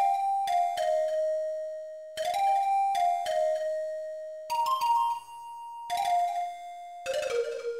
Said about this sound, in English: I've always liked this instrument. It kind of sounds like a wind instrument, like a panpipe or something like that, but it hits each note so hard it almost feels percussive as well.